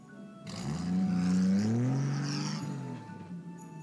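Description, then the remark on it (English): A heavy truck rumbles past from one side to the other, its engine droning louder as it nears, peaking, then fading away; no voices. “Sometimes it's a matter of just letting a truck go by.”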